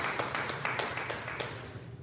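An audience applauds for grandparents, a dense patter of many hands with a few sharper claps standing out early on, then the clapping gradually thins and softens over two seconds.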